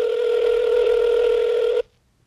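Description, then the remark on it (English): A phone call ringing on the line: one steady, loud electronic ring tone held for nearly two seconds before it cuts off abruptly into silence. No voices. “The phone is ringing.”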